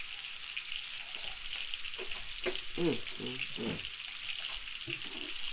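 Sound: chicken frying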